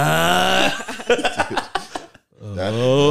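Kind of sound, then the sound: vocal imitation, voice imitating loud snoring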